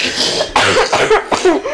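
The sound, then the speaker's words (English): A short run of three or four harsh, muffled coughs in quick succession, fairly loud, with a breathy hiss between them and no talking. “When I'm coughing.”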